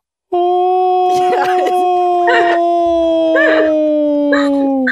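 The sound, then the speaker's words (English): A person imitates a dog howling in its sleep: one long, steady, drawn-out tone that slowly sinks in pitch, broken by breathy, yelping bursts at regular intervals, loud throughout. “It sounds like a howling person.”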